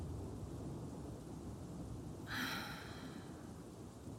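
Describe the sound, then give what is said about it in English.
Steady rain hisses over a low, continuous rumble of thunder, with a brief sharper burst of sound near the middle. No voices, just the storm at a moderate, even level. “I knew the storm was bad, but I didn't think we were gonna, like, lose power.”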